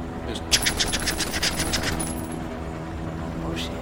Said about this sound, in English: But they're like coming at it and flying. They're flying parallel with it. They've adjusted their speed so they can keep pace with it. And they open fire and they strafe the whole car.